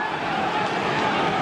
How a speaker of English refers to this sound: Noisy crowd here at Adelaide Oval. Sell out.